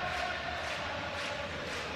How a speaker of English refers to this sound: The crowd singing …. We've been told it's a sellout tonight. SRO. They're not all in their seats yet.